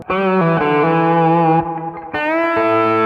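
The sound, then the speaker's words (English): A steel guitar plays a short phrase of sustained, gritty notes through a blended distortion effect, with a little distortion added, roughly five pitch changes in a row, loud with no talking. “So sometimes you have to tweak what you do, but you can blend the distortion here. I'll put a little bit on here.”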